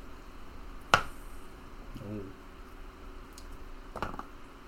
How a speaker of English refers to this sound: Okay. Between the two dice, we have a 12.